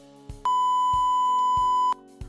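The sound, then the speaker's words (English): A loud, steady sine wave tone sounds for about a second and a half, a pure unwavering beep that starts and stops abruptly, over soft, evenly spaced low thumps in the background. “That was a sine wave you just heard.”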